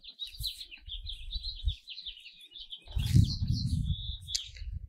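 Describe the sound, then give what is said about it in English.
Birds chirp and sing continuously outdoors on a lawn in a steady high-pitched chorus, with occasional fluttering and low rumbling or flapping sounds underneath. No one speaks. “Jesus, the birds are singing, and all creation is declaring that you are majestic.”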